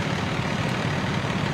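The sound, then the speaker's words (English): A huge tow truck's engine idles steadily, a continuous low, rumbling drone with constant loudness and no pauses, with no voices over it. “This is the biggest tow truck I've ever seen.”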